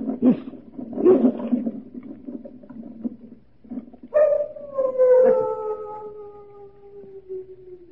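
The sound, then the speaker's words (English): After a few seconds of low rumbling, many large dogs kept at the Chateau d'Azay break into long, drawn-out howls that slide slowly downward in pitch, overlapping one another and fading gradually toward the end. “Only the dogs, monsieur. They keep many dogs, large dogs at the Chateau d'Azay.”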